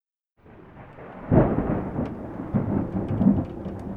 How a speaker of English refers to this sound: The rain rapping on her window was so loud that night that she almost didn't hear the person stirring in her master bathroom.